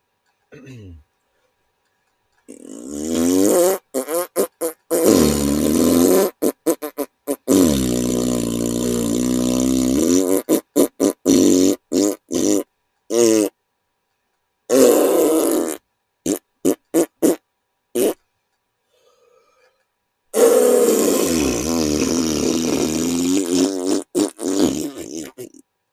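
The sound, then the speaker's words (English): A voice imitates farts with long, buzzy, sputtering blasts, followed by a rapid run of short choppy bursts separated by silences, then another drawn-out raspberry at the end. Loud. “And then a bunch of like fart sounds in the back.”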